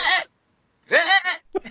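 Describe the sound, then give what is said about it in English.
A goat bleats: a short loud cry, a pause, then a longer wavering bleat and a brief clipped one at the end. No one speaks. “I'm sorry, do you have a goat with you, Matt?”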